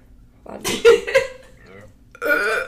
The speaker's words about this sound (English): I feel like I have to burp.